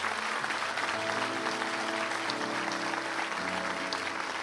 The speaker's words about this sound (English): We got to clap for God. God, not us.